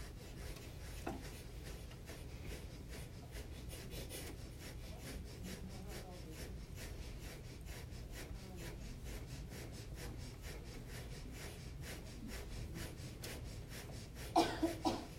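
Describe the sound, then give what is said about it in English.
Rapid, rhythmic panting breaths through the nose with the tongue tucked in, done as a breathing exercise, a steady run of short, breathy puffs repeating quickly and evenly for the whole stretch, moderately loud, with no talking over them. “Stick out your tongue and pant like a dog. Good, now tuck your tongue in and do the same breathing through the nose.”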